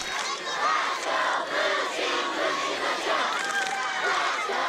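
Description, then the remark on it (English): A large crowd at a rope-burning contest yells and cheers wildly without letup, cheering on the teams, a dense wall of overlapping shouts and whoops holding steady at high volume throughout. “In rope burning, the crowd is so wild and you feel like you have a huge part in rope burning.”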